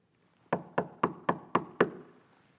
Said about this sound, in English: When was the last time your knuckles knocked on a door?